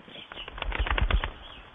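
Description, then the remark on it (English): A quick burst of rapid wing flaps as pigeons take off from a shredded old Sopwith Camel biplane being unburied, a fluttering clatter that builds and fades within a couple of seconds. “It's shredded and looks like it's the home to pigeons.”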